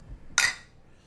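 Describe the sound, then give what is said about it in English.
Two glasses of a highly rated beer clink together once in a toast, a bright, ringing chime that fades quickly against a faint low rumble. “All right, so cheers.”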